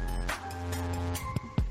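A car engine drones steadily while tires screech in short bursts, ending with a couple of sharp, loud jolts like a skid into a crash, with no one talking.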